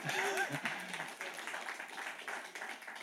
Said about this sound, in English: Come on, I got to clap right here.